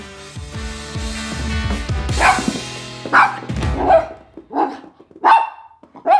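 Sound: dog barking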